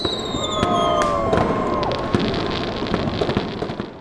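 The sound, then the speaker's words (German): Fireworks across a city at midnight on New Year's Eve (31 December) crackle and pop continuously, with a dense wash of bangs and sharp bursts, while high whistling tones glide through the first couple of seconds. No one speaks. “An Silvester, also am 31. Dezember, fahren viele Menschen um 12 Uhr nachts mit der Ringbahn und bewundern die Feuerwerke in der ganzen Stadt.”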